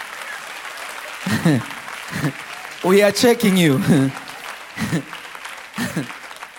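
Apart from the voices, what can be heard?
audience clapping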